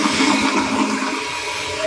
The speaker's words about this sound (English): Well, Headmaster, I call it the flushing toilet.